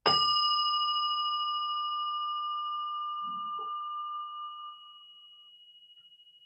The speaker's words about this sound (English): I guess I'll ring a bell because I have one.